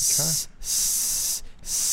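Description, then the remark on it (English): A person hisses like a snake in long, loud bursts, three sustained hissing breaths separated by brief pauses, with a short voiced sound near the start. “I'm a snake.”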